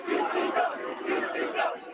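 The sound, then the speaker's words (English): A wrestling crowd cheers and roars in a loud, continuous wall of voices, with rising and falling swells of shouting and chanting throughout. “Like that crowd, like listen to that crowd.”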